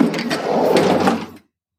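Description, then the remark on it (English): A paramedic opens a hospital passageway door in one continuous scraping, rumbling motion lasting just over a second, moderately loud, then silence. No voices. “A paramedic in blue opened the passageway door and stepped in.”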